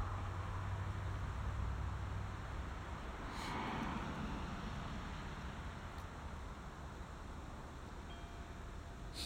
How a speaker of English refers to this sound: Wait for the car.